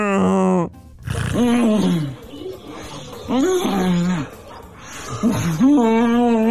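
A woman snores loudly, making drawn-out grunting noises in a few rough voiced bursts separated by short pauses, prominent with no other sounds.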